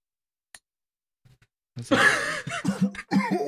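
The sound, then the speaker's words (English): After a brief quiet with a faint click and soft breath, someone bursts into a harsh, raspy fit of coughing after inhaling a vape, several spluttering coughs in quick succession. “Yeah, you can't cough with vape in your mouth.”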